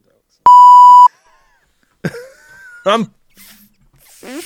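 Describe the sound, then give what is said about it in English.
A single loud, steady censor beep over swearing lasts about half a second, then breaks off into quiet, followed by a few short throaty vocal noises. “I'm swearing. I don't even care. I'm going to beep it out.”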